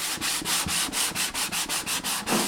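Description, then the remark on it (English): A 21-year-old hand sands a wooden mandolin body held between his knees: quick, steady back-and-forth strokes of hissing sandpaper, about four per second, fairly loud, with no voices. “The 21-year-old is surrounded by an assortment of electric belt, drum, and rotary sanders, but he spends hours each day with an instrument between his knees, sanding it by hand, back and forth.”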